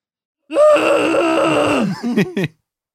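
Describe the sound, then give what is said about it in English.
A voice imitates the long squall of something in the woods: one drawn-out, wavering, moaning cry lasting about a second and a half, followed by a few shorter broken yelps, loud and with no other sound. “I don't really know what a squall. I think that's a squall.”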